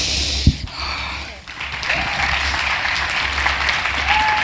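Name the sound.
round of applause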